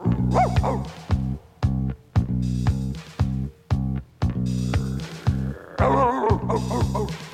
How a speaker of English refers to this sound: old boy, what are you barking at? What do you see?